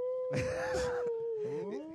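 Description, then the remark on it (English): Someone imitates a ghost as a sound effect with a long, wavering vocal moan that holds a steady pitch, breaks into breathy bursts, then slides and warbles lower toward the end. “You sound like a ghost or just like a confused dog.”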